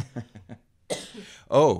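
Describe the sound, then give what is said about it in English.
A couple of harsh coughs follow a few short throaty grunts, the last cough rough and partly voiced, each burst loud and abrupt. “I have to cough.”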